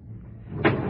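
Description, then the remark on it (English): A train car door slides and thumps shut partway through as the train stops at a platform, one short knock over a steady low rumble. “When the train stopped, he went in through the center door. I went in by the door at the rear of the car.”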